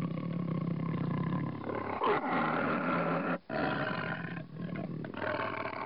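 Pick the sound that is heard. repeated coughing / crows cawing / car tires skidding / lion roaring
lion roaring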